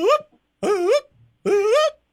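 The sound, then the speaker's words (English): A person imitates a wolf howl with three short, loud, wavering yips in quick succession, with brief pauses between them and no talking. “go ahead and give them your howl.”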